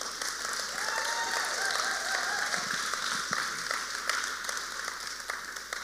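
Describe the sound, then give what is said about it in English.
An audience in a gymnasium applauds new members steadily, dense overlapping claps forming a continuous wash of sound that holds at an even level for several seconds, with faint voices murmuring underneath. “Yeah, give them a hand clap.”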